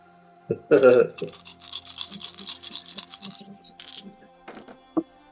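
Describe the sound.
Six dice, rolled for a negotiation, clatter and rattle together in a quick burst of sharp plastic clicks lasting a couple of seconds, followed by a few scattered taps as they settle. A brief voice sounds at the start.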